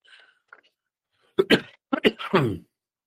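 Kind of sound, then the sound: human body sound, coughing and clearing throat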